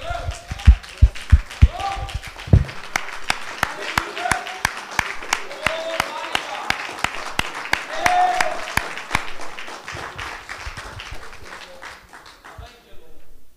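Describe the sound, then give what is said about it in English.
Steady, evenly spaced hand claps ring out in a sharp rhythm for several seconds, given to people who did a great job tonight, with voices murmuring underneath, before the clapping thins and stops near the end. “You know, they did a really great job, and I think they deserve a hand clap.”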